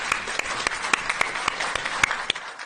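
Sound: audience applause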